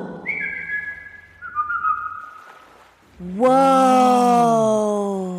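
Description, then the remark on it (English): A person whistles a family whistle call, a short two-note call with a high held tone dropping to a lower one, followed by a loud, drawn-out vocal note that swells and slowly fades. “How about a family whistle?”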